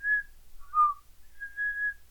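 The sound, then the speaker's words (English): A person whistles a short melodic phrase of a movie's background music, clear pure tones that rise and fall across a few sustained notes, alone with no talking. “That's all I can whistle or we're gonna get sleep.”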